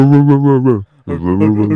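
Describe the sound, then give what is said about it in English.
A dog, Zeus, barks twice outside, each bark long, drawn-out and loud with a strong tonal, howl-like quality, separated by a brief pause and with no talking over it. “Yeah, Zeus is barking outside now, so like...”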